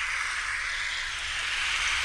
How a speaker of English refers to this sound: What do you want to hear? Heavy rain, vacuum, hair dryer or tumble dryer? Let's go heavy rain. Heavy rain. Here we go.